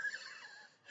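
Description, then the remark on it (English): A single short, breathy sneeze, fairly quiet and heard on its own with no talking over it. “Bless you.”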